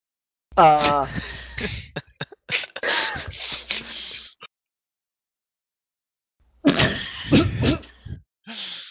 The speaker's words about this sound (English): As I, like, try to muffle a cough, and I scowl, and I expend one of my rages.